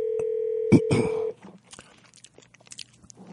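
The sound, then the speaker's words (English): A steady telephone dial tone hums for about a second, interrupted by a couple of short dialing bursts as a phone call is placed, then cuts off, leaving faint clicks and quiet rustling. “We lost the internet, and so I'm just going to bring you back on the phone right now.”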